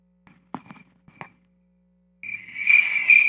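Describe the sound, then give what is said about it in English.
A few soft knocks and clicks over a low hum, then crickets start chirping loudly and steadily, a shrill pulsing trill that fills the final second with no one talking. “Nothing but crickets out there.”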